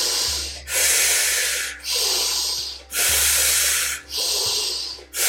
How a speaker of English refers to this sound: So when you're ready, just going right into that second round of the breath, in through the nose and out through the mouth.